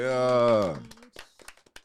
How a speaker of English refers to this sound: Yeah. You probably hear like 6 hand claps. That's because we got our homies in the building today where we're in their building.